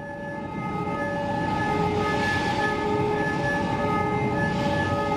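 Steady, sustained alarm tones blare over the continuous rumble and clatter of rail carts carrying scrap metal, such as shredded automobiles and railroad wheels, along tracks to a plant's electric arc furnace. It is loud throughout, with no talking.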